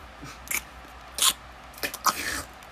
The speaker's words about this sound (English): Can you say that when you're not chewing? No, there's a reason why the no eating rule is on the podcast.